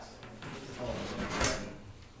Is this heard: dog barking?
no